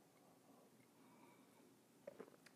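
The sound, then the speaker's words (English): A quiet stretch of low background hiss, then a short burst of soft slurping and swallowing near the end as someone sips coffee. No one talks. “It's all going to be better with a sip.”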